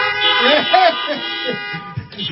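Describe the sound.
Several car horns honk at once in an open lot as churchgoers in their cars honk for an amen at an Easter drive-in service, their tones overlapping into a sustained, blaring chorus for a couple of seconds, with voices faintly mixed in underneath.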